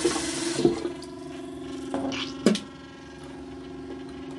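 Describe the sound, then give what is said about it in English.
Water runs steadily from a tap while someone brushes their teeth, with a hissy gush at the start, a low humming undertone and a few sharp clicks and knocks against the sink. “So far, brush my teeth.”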